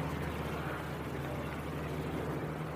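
A propeller airplane with two sets of long wooden wings drones steadily overhead as it flies high in the air. Its engine is a constant, loud, buzzing hum with a low throbbing pitch that never changes throughout.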